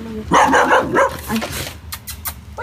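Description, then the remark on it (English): A dog at a house's opened front door barks in a quick run of sharp, high yips and woofs, followed by a few short breathy bursts, fairly loud over a faint background hum. “She's here with this dog, looking extremely confused and disheveled, like as if she'd just been woken up out of bed.”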